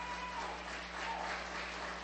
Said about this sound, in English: Oh, He is good. Come on, give the Lord a hand clap this morning.